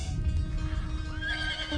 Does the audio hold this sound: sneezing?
no